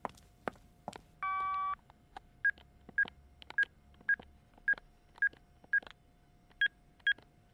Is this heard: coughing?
no